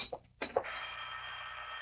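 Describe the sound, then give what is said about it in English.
A telephone rings with a steady, bright, buzzing bell tone that holds on for over a second, preceded by a couple of short clicks and knocks. No one speaks. “I'm not going to answer it.”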